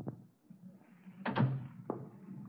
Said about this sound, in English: Look, close the door and sit down.